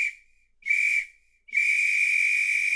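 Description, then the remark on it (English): A referee's final whistle sounds three shrill blasts, two short ones followed by a long sustained final blast, loud and clear with no voices. “There's the final whistle.”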